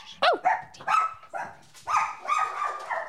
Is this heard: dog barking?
yes